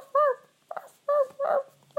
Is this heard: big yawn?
no